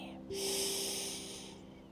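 A single deep inhale drawn through the nose, an airy rush of breath that swells quickly and tapers off over about a second, with no talking.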